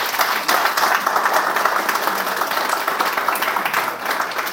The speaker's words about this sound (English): The applause sounds good in a podcast